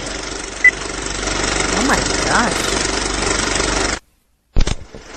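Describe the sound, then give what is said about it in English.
A film projector whirs steadily with a continuous mechanical rattle and hum during an old movie countdown before a film, a couple of faint wavering tones drifting through it, then cuts out abruptly before a brief spoken word. “No, that's the old movie countdown. So when you go to the movies, and it's kind of the fuzzy screen and the 5, 4, 3, 2, 1.”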